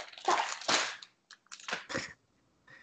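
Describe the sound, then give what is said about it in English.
Crunchy gnawing sounds of cats chewing on a phone charger: several irregular bursts of scraping and biting, separated by brief pauses, with no talking. “Sorry, my cats are trying to chew on my phone charger.”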